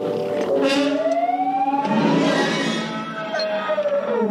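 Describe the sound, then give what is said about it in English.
A film sound effect made from elephant trumpeting: a loud, continuous, siren-like screaming wail whose pitch glides upward and sags back down across a few seconds, with no voices. “Listen to it again here and think elephant.”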